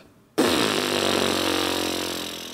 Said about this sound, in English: The vocal folds start vibrating like this.